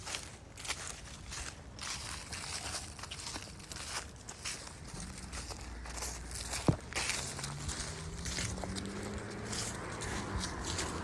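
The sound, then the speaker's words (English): Nighttime street ambience on the streets of West Minneapolis: a steady wash of crickets and rustling, crunching leaves underfoot, with the low hum of cars passing by and one brief sharp click midway. “Got the crickets, the leaves, the cars passing by.”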